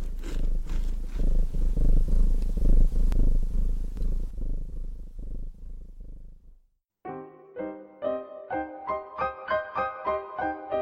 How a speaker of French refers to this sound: Je prends un paquet de gâteaux et je les mange en écoutant mon chat ronronner.